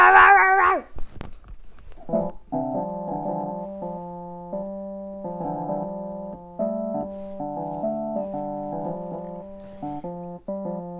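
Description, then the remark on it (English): A dog lets out a sharp, loud bark, then breaks into long, sustained howling that wavers between pitches for several seconds, clear with no talking. “Fights by barking his way through.”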